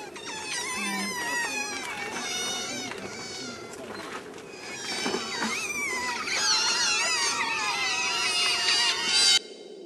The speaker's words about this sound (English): This is something I pulled from YouTube of some otters mewing.